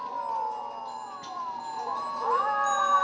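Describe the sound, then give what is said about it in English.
A cat in a film yowls in a long, wavering cry that sags low, then rises and holds steady near the end, clear over a faint background. “Alright, that was just a random cat hanging out with the werewolves.”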